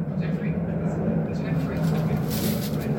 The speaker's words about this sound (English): Oh, y'all mind the, hold on, I'm finna pause it because it's a plane flying over. All right, I'm back.